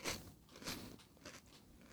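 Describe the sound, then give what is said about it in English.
A chip being crunched: several crisp, crackling bites in an uneven rhythm, each a short burst of dry snapping, with no talking. “Is that one chip?”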